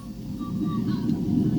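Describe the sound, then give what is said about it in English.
A steady low mechanical hum with a churning, gurgling quality as a coffee maker's pump draws water from its 60-ounce reservoir into the tank to be ready for the next cup, continuous with no talking. “Now it's pulling more water in from the 60-ounce reservoir into the tank so as to be ready for the next cup.”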